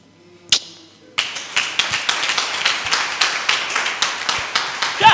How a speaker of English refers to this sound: Don't just clap. You are clapping, but clap with meaning.